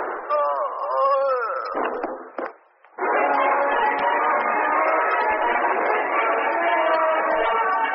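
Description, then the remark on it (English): A wavering, voice-like cry gives way to a few sharp, loud gunshot bursts from a gun stuck through a rear window by a gloved hand, followed by a brief lull and then a long stretch of steady, harsh noise. “Oh, heard a shot in there.”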